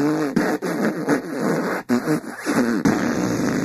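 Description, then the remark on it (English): A voice makes a long series of wet, sputtering fart noises with the lips, loud, in rapid uneven bursts that run almost continuously with only brief breaks. “Can I stop farting now?”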